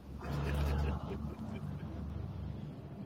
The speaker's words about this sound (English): Look, now trucks want to ride past. It was all quiet.